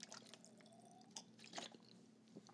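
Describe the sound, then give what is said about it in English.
Quiet sounds of someone sipping water and swallowing, with a few soft wet gulps and small mouth clicks spread over a couple of seconds, ending in a slightly louder splash-like click. “Sorry, I had to take a drink of water there.”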